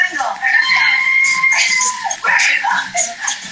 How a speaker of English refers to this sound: God, who is screaming? What a classy bunch of girls. Awful. It's awful.